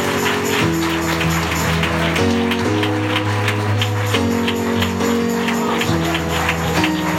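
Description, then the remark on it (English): A church audience claps steadily to welcome a preacher to the pulpit, over loud, sustained organ or keyboard chords that shift every second or two, the clapping forming a busy, rhythmic patter throughout. “Let's give the man of God a great big hand clap as he comes.”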